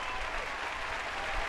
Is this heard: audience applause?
yes